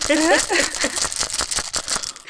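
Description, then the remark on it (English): A brief voiced exclamation opens, then dice rattle and clatter in a quick run of sharp, bright clicks and taps that patter irregularly for about a second before stopping. “So this is me rolling dice.”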